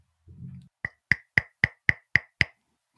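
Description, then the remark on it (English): A brief low thump, then seven sharp, evenly spaced knocks on a house's front door in a steady, quick rhythm, each one crisp and fairly loud with a short ring. No one speaks. “Can I go knock on the door real quick?”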